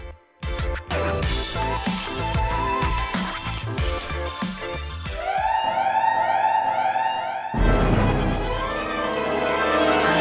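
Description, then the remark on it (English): A loud alarm in a Star Wars audio drama blares in repeated rising and falling wails with a bright, harmonic tone, sounding at an Imperial Citadel during a rebel incursion. It follows a dense burst of clattering effects and gives way to a roar of noise at the end. “Alert Team Scarif, and would somebody please deactivate that blasted alarm?”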